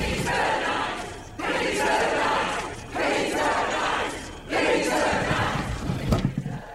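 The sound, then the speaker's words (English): A large crowd of visitors gathered outside roars and cheers in loud, sustained surges, swelling and dipping in roughly four waves of massed voices with no single speaker standing out. “Listen to that crowd.”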